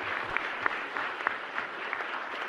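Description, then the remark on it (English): A crowd applauds steadily to welcome a speaker at a lecture, a dense wash of many hands clapping at an even level, with a few sharper individual claps popping out above the rest. “Can we give her a warm welcome, please?”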